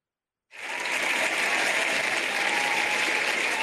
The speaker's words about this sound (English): Fantastic. There you go. That's the crowd with a big round of applause.